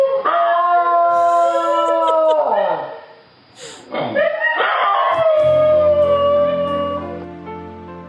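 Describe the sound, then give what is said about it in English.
A New Guinea singing dog howls loudly, its eerie tonal wail sliding up and down in pitch. There is a brief break partway through, then more layered howling. “I think I'm just gonna let the New Guinea singing dog play us out.”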